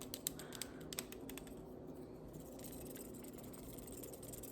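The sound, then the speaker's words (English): A mechanical pencil clicks in a quick, irregular burst of sharp little snaps, then the clicking fades into a low, steady background hum. “I found my writing utensil. It's a mechanical pencil.”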